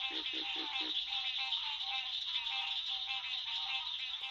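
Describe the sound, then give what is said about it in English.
A dense chorus of green tree frogs and cricket frogs calls steadily in a southern swamp in the Apalachicola National Forest, with nasal honks and rapid clicking layered together and a few low, evenly spaced pulses at the start. “They're the nasal tones of green tree frogs and the clicking tones of cricket frogs.”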